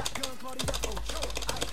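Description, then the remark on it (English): A rapid, uneven clatter of keys being pressed on a computer keyboard that is not responding and may be broken, with many sharp clicks in quick succession, while voices murmur underneath throughout. “It's your fucking keyboard, you prick. I've probably broken it.”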